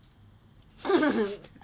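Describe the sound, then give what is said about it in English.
A short snippet of a Power Rangers phone ringtone: a brief high beep, then about half a second of a louder, wavering electronic melody at moderate volume, with no talking. “I can hear your Power Ranger ringtone.”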